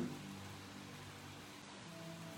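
Steady rain falls with wind coming in, a continuous, even hiss, a dense wash of noise with no pauses, fairly quiet and without any voices.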